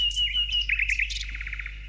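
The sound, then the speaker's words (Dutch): Small birds chirp in quick, bright bursts: a sustained high whistle, then a rapid series of short repeated tweets, over a steady low hum with no voices. “Allemaal vogeltjes.”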